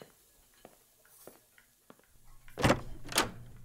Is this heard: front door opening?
yes